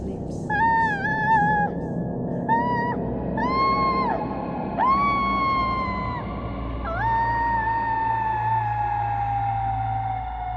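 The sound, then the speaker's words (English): Wolves howl in long, wavering tones, several voices overlapping at first, each call rising then sliding down, ending with one sustained falling howl over a low steady rumble. “They howled. She howled.”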